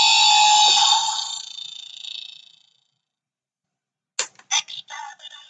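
A Dalek novelty alarm clock from Doctor Who goes off with a harsh, buzzy electronic tone that fades out, then after a pause returns in a series of short, choppy robotic bursts, loud.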